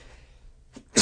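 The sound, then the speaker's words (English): A sudden, loud sneeze caused by hay fever bursts out right at the end after near-quiet, with a faint breathy catch just before it; the sneeze itself is abruptly cut short. “Bless you.”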